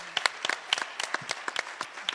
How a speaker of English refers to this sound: But first of all, let's give these panelists a round of applause.